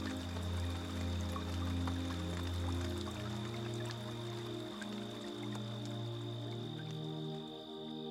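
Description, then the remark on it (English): Steady rain patters softly throughout, a dense hiss of drops with scattered little taps, mixed under sustained, gentle musical tones; no one speaks. “The wind is picking up a bit. The rain we soon will hear.”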